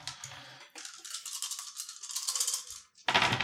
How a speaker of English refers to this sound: Rolling in little separate tiny groups. That's great dice rolling technique. Yeah, that's what you got to do.